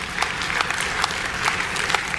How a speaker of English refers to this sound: Clap.